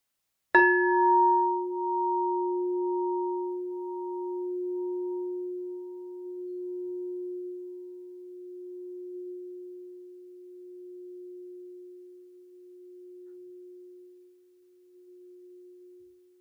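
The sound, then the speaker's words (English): A single bell strike rings out with a sharp attack, then a steady low hum that slowly fades over about fifteen seconds while brighter overtones die away early. No one speaks. “I'm going to strike the bell again”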